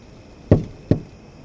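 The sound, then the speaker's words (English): A mother knocks twice, firmly, on her son's wooden bedroom door, about half a second apart, clear against a quiet background with no voices. “Mom knocked at his door, but he wouldn't come out.”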